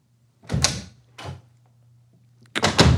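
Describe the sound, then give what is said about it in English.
A door is fumbled open and shut by someone who doesn't know how to work it, making three loud clattering bursts, the last the heaviest, with a faint low hum steady underneath and no talking. “doesn't know how to work the door.”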